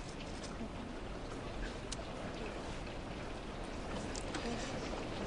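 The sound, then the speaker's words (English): Steady rain falls, a dense, even hiss broken by scattered sharper drop taps, continuous throughout, with no clear talking. “So you're enjoying the rain?”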